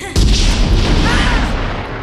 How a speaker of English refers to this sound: First gunshot after Arnold yells, "Get down," is, from my memory, I think, like, several different guns, a shotgun, a rifle, a pistol, like some cannons, and like yeah. a cannon all going off at once. Yeah, just to make it sound like epic.